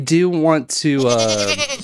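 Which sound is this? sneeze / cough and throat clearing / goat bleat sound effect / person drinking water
goat bleat sound effect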